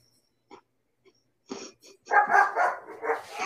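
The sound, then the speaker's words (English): A dog barks, starting with a few faint, scattered yips before louder barks burst out and run together into a sustained, excited stretch of barking and yelping. “That was dog bark for Megamus and Megatoy fan.”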